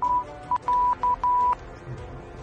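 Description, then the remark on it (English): Telephone keypad tones as someone dials for an ambulance: five clear electronic beeps at a steady mid pitch, some short and some drawn out, in an uneven rhythm. Only faint background noise remains afterward, with no talking. “Is that you calling SOS?”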